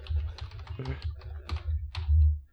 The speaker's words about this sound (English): You hear the kind of typing in the background of the...